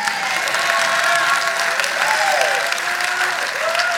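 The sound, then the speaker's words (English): An audience claps steadily throughout, a dense, loud wash of many hands with no pauses, accompanied by faint sustained tones and a few scattered voices underneath. “Those of you in the back that aren't clapping, you can be dismissed.”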